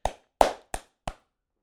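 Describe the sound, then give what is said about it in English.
Four sharp, crisp hand claps in a slow, slightly uneven rhythm, the second one loudest, each snapping out and fading quickly, with no voices alongside. “Round of applause.”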